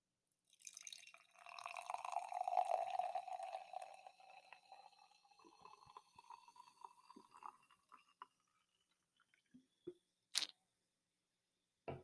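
Cider pours into a glass right beside a laptop with a steady rushing, gurgling stream that rises in pitch as it fills, then tapers to a few drips and light clinks near the end.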